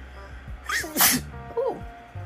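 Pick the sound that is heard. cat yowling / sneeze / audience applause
sneeze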